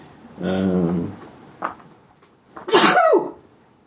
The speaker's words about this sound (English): I did a little sneeze there, I'm sorry. Bless you. King of adorable sneezes.